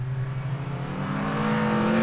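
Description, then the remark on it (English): Race car engines rev and rise in pitch together, a loud, continuous mechanical roar with strong harmonic whine that builds steadily over about two seconds, with no voices present. “So, ladies and gentlemen, start your Bobcast engines.”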